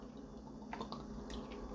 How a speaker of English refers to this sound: Sorry, I had to drink some water. I'm parched. My throat is dry because I've been talking at you guys for 24 minutes straight.